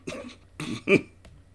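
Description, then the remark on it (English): Three harsh coughs in quick succession, fairly loud, the last one sharpest, followed by a faint throaty breath, as a man gulps rough brandy from a bottle; no one speaks. “He gulped it down and coughed and gulped some more and half began to smile.”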